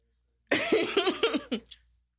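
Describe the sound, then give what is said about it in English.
A quick run of several harsh, throaty coughs, tapering off at the end, with no talking. “So I need to cough.”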